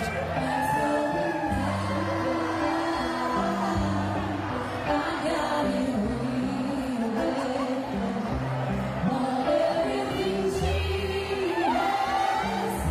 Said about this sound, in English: I can sure hear the crowd singing.